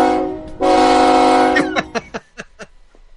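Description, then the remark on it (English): A loud train horn sounds one long sustained blast, then several short clipped toots that fade away, with no talking. “He sent me the live sound of his train sound.”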